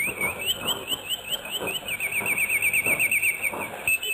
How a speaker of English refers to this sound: A bird chirping. The song of the bulbul. The signature call sign of Radio Baghdad.